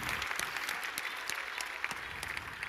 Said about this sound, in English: Give a round of applause to my Moves and Grooves team. Thank y'all.